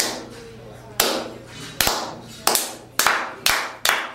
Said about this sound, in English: Every match. Oh, yeah. Every time that we wrestle, they go out there and they clap. It's like this. It's like...